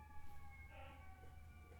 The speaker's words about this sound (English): I hope those sirens get picked up on the recorder.